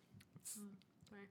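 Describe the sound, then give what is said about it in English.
A loud fit of wet coughing: a few harsh bursts, the strongest in the middle, each with a throaty, voiced rasp and short pauses between them. “Luckily, that was a wet cough.”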